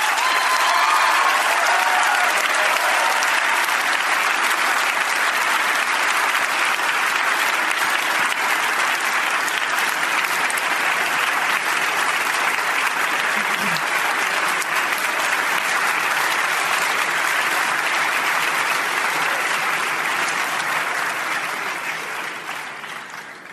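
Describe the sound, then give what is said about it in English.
Sustained applause from a large debate audience after a speaker finishes, a dense steady wash of many hands clapping for over twenty seconds before it starts to fade at the end. No one speaks over it. “Your hands will get tired if you clap too long for every speaker.”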